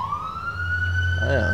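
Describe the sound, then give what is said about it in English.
An emergency vehicle siren wails steadily with a rising pitch over low traffic rumble as it moves through traffic, with a brief burst of voices or another sound near the end. “He's just probably trying to get through traffic, too.”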